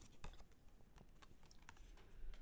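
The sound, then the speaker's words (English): A deck of cards being shuffled, a rapid run of soft papery clicks and taps that patter unevenly for a couple of seconds, with no one speaking. “And I'm going to shuffle and see if I can get an answer on that.”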